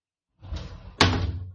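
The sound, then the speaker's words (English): An office door swings shut with a soft creaking movement and then lands in a solid, fairly loud thud, with no one speaking. “Can you close the door?”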